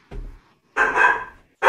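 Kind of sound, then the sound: animal, dog barking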